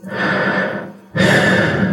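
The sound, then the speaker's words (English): A loud, breathy sound of stairway walls breathing: one long airy breath, a brief pause, then a second equally strong breath, like a slow inhale followed by an exhale. No one speaks. “and I raced to the bottom of the stairs just as the walls started breathing.”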